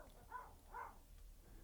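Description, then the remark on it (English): The speakers' own dog barks twice in the background, muffled, the two short barks about half a second apart over a low steady hum. “There's our dog.”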